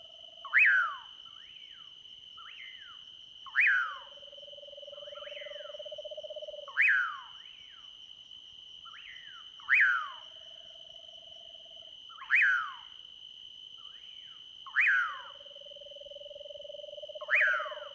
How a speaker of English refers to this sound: We walk into the park at dusk in search of interesting night sounds. Parakis sound off, and two eastern screech owls trill from the sides of the road.